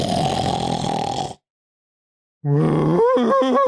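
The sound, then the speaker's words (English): A person vocally imitates the loud, rumbling snoring of a big toad lying on its back, in two bursts separated by a second of silence, the second rising into wavering, throaty grunts and groans. Loud, with no other sounds. “It's me snoring.”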